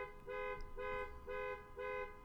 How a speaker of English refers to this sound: And now you're about to hear a car beep.